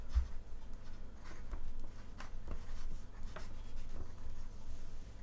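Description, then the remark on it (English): A pen scratches across a piece of paper in quick, uneven strokes as quiz answers are written down, fairly quiet, with brief pauses between bursts of scribbling and a low hum underneath. No one speaks. “I want you to both write on a piece of paper.”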